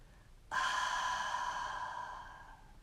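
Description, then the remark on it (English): A single long, forceful exhale through the nose during a breathing exercise, breathing out as much air as possible while curled up holding the knees; a steady breathy rush that starts abruptly, holds for about two seconds and slowly fades, clear with no talking. “And exhale out, breathing out as much air as you can.”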